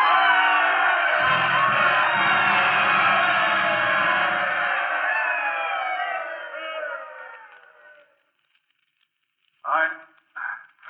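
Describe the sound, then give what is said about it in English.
A stadium crowd rises to its feet and cheers for ball player Lou as he comes to the microphone, a dense, steady roar for several seconds that gradually fades away. A man's voice begins speaking in short phrases after the noise dies down. “And the crowd rose to its feet and they told him they loved him.”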